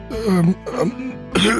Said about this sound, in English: You see him like kind of like cough to himself and he looks over as you approach.